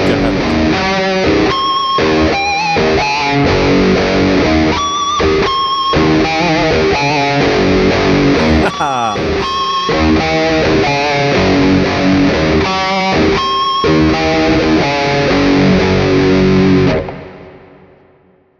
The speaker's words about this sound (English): Can I hear this descending pattern again? With the distortion or in the clean part? Yeah, with the distortion, I think.